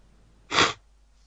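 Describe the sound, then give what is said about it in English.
A single short nasal sniff done on purpose by a person as part of a guess-who game, a quick breathy rush of air lasting about a third of a second, fairly loud against an otherwise quiet background. “Each one of us does a little sniff.”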